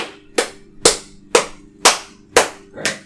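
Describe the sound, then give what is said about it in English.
Six sharp, loud hand claps in a steady rhythm about half a second apart, each snapping crisply and fading quickly, with a faint low hum underneath and no talking. “Try do a clap.”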